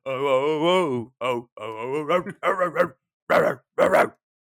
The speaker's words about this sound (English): That's a puppy.